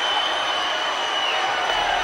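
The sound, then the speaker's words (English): A large capacity crowd at a wrestling arena cheers and roars, on their feet during Hacksaw Jim Duggan's match against Yokozuna. The noise is a steady, dense wash, loud and unbroken for the whole two seconds, with no single voice standing out. “With the crowd on their feet, Duggan sensed Yokozuna's vulnerability.”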